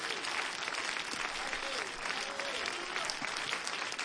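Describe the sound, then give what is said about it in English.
A church audience claps hands to give praise to the Lord before being seated: steady, dense applause, a broad wash of many overlapping claps that stays loud and even for the whole stretch, with faint voices murmuring beneath. “Would you clap your hands and would you give the Lord great praise here today before you're being seated?”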